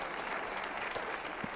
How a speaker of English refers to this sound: Clap your hands.